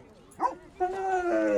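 An excited dog arriving at the bottom of the hill at Dog Mountain in Vermont gives a quick sharp yip, then a drawn-out, high, wavering whining bark, fairly loud, with no other sounds around it.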